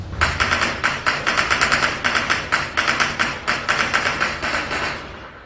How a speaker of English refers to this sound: Gunfire on the porch. Frightening, isn't it? What would you do?